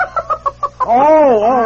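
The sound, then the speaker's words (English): A chicken gives about six quick, evenly spaced clucks, then breaks into a long, wavering squawk, fairly loud with no talking over it. “Well, I'll put the Bidens down for the two chickens, the four hamsters,”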